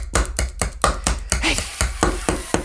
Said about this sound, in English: He's banging his head against the door with his machete.